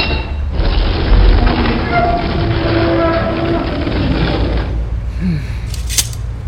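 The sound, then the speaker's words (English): The great stone doors of a pyramid, opened by pushing down a stone lever, swing open with a loud, deep grinding rumble and faint scraping whines, lasting about four seconds before cutting off, followed by a short soft thud. “With little effort, she pushed it down, and the great doors swung open before me.”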